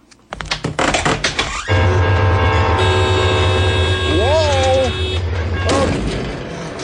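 A train on the Illinois Central Main Line between Chicago and New Orleans roars past steadily and loudly, with sustained horn-like tones and a couple of squealing, rising-and-falling pitch glides, after a brief burst of clattering knocks at the start.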